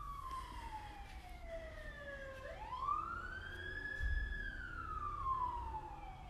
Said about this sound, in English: I've mentioned before, you know, there's a lot of sirens lately. It's kind of a scary time. Here comes another one.